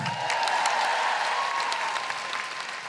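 Sustained audience applause fills the room, a dense steady patter of many hands clapping at full volume before easing slightly toward the end, with no voices over it.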